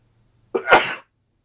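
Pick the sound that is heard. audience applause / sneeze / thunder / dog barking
sneeze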